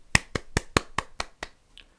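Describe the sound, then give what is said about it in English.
Seven sharp, bright hand claps, an applause sound effect added while editing audio, land in a quick, even rhythm, growing gradually softer, followed by one faint, thin tap. No one speaks. “Right here, I should add some applause, I guess, because I learned how to edit audio.”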